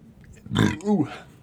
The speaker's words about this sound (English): Just burp it out, yeah, man. Yeah. Yeah, man. Just had to get it out.